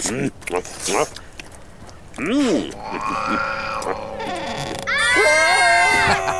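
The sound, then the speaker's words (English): A person screams in the middle of the woods in shrill, wavering bursts, starting with short yelps and swelling into a long, loud, strained wail at the end, raw. “That's right. Scream. No one is listening in the middle of the woods.”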